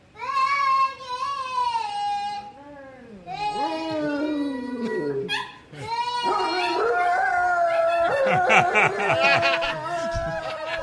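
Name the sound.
dog howling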